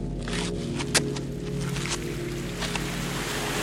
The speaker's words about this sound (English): The sound of the water you hear is the Seine flowing.